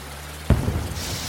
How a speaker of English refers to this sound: Okay, I am now firing the water cannon.